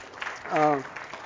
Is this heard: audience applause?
yes